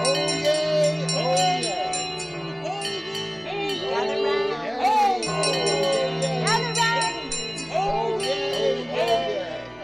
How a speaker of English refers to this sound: Now, this week we're talking about Somerset, so are you ready to ring the bell and unleash the county crier